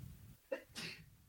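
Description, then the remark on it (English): A single sneeze: a quick sharp intake followed by a bright, breathy burst, with low background noise around it and no talking. “Bless you. God bless us all.”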